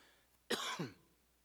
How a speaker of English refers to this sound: Oh, excuse me, I was supposed to cough into my elbow. That's 59 years of habit, I'm sorry.